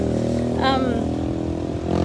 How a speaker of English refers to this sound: these roads are so busy. I live in Costa Rica and it's a bit of the Wild West. So here comes a motorcycle. Everyone's on motorcycles here. There they go.